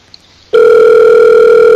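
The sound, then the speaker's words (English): A telephone line tone as a call is placed to a Los Angeles number begins abruptly after a brief moment of quiet, a loud, steady, unbroken mid-pitched hum with buzzy overtones that holds to the end. No one speaks. “Digital's failed us before, so I don't know if we should call this Los Angeles number.”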